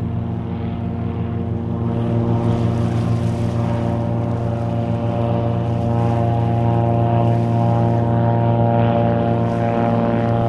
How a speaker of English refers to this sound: But we're looking right over at the Canada Place right now. We picked a heck of a time with all these planes taking off.